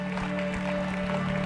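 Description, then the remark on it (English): A church audience stands and claps together in celebration, a steady, dense wash of applause with a sustained low tone humming underneath throughout. “Why don't we stand up and just give the Lord a clap, celebrate.”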